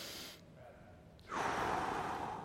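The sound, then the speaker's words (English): A group of people draws in a deep, audible breath together, a broad rushing inhale that swells after a brief hush and holds steady, moderately loud. “Everybody take a breath.”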